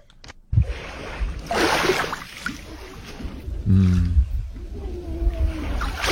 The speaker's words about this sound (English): Oh, yeah, that's a wave right there. Yeah, that sounds nice. Just kind of laughing at the shore.